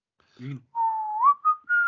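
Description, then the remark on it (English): A person whistles: a long steady tone that slides upward, then a short note and a higher held note, preceded by a brief low vocal sound. “I whistled.”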